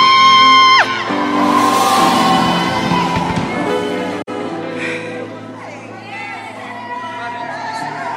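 A crowd shouts and cheers loudly and continuously for several seconds, their overlapping voices mixed with sustained musical tones and a brief sliding pitch early on.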